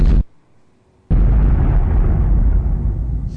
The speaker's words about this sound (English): That bomb explosion was actually one of them from Lethal Weapon.